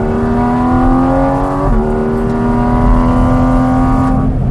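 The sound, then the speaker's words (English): A Porsche Cayman GT4 RS engine screams steadily at high revs, its pitch climbing, briefly dipping at a gear change, then rising again before cutting off; no one speaks. “Here's the personality.”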